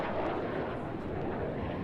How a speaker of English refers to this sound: That's right. A jet. This is a jet. A jet is considered an airplane.